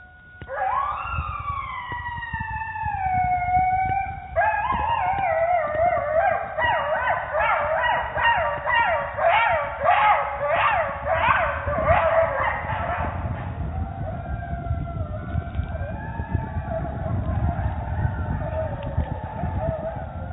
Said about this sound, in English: The second is a pack of coyotes.